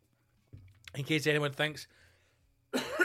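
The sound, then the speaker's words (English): A person coughs, a quick cluster of rough, voiced bursts, followed by a breathy noise after a short pause. “Anyway, just a cough there to remind us all that we're still in a global pandemic.”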